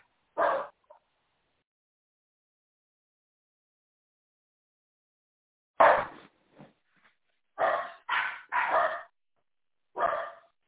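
A dog barks loudly: one bark, a long pause, then a burst of three quick barks and a final one, with no voices.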